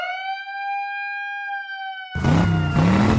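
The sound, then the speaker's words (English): A siren sound effect: a steady, high electronic siren tone holds for about two seconds, then cuts abruptly into a louder, harsher burst of noise with a lower wailing tone that rises and falls. “The show started out with Daniel Bryan and Mustafa Ali in a match that hit the siren.”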